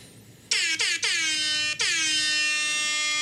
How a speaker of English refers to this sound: We haven't changed the air horn yet. Not yet. But we said we're going to.